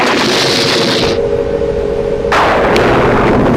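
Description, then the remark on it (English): A loud thunderclap crackles and rumbles with no one speaking; the harsh hiss dulls briefly in the middle, then a second sharp burst tears back in and keeps rolling to the end. “In the meantime, and please wait to hear for the next thunderclap.”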